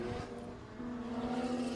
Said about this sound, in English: Well, that's an overdrive on rev. So okay. Or 4 liter. So is that an error on the driver's part? No. No, it's okay to do that? Yeah, that's what you get with a raw, naturally aspirated engine. Yeah. Sounds really, really good.